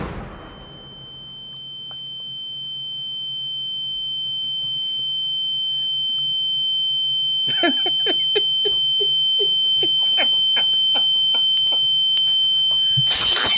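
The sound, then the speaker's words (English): A loud explosive burst in a movie scene fades out at the start, leaving a steady, piercing high-pitched ear ringing that persists throughout, later joined by clattering impacts and crackles. “It's just that ringing in there.”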